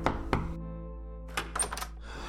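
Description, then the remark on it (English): A police detective's clenched fist pounds on a door with two heavy, dull thumps, followed after a short pause by a quicker cluster of softer knocks and rattles, with no voices. “I reached out a clenched fist and pounded it against the door.”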